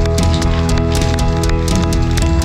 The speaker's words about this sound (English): Let's give the Lord a hand clap of praise for what he's doing here.